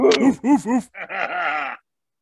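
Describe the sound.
Several voices imitate dog barks: a few short, loud, yelping barks in quick succession, then a longer drawn-out howling bark before silence.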